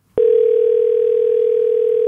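A steady telephone dial tone starts abruptly as someone phones a friend, holding at a constant pitch, loud and continuous, with no talking over it.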